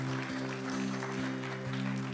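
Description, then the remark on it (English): A church audience claps steadily in a dense, continuous wash of applause to God for people who have just prayed to accept Jesus, with a sustained low organ-like drone underneath and no voices standing out. “Could we just give applause to God and for these people who are making such an important decision today?”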